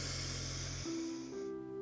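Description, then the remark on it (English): An airy rush of a deep breath drawn in through the nose for over a second, overlapped by a steady hummed tone that steps up in pitch twice. “Inhale through your nose and hum.”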